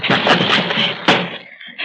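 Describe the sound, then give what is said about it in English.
A door being battered and broken down by a cop: a rapid series of loud, heavy crashing blows, the last one the biggest, trailing off into a brief rumble before another hit begins. “Breaking the door down?”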